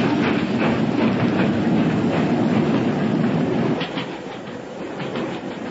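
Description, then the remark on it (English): A British train rolls along the rails with a steady, rhythmic clickety-clack, loud, its rumble easing slightly toward the end with no voices present. “Stop! Stop the train!”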